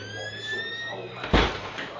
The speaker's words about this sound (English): I always find the door by trying to find the metal thing. I can hear the door actually. So we'll go in.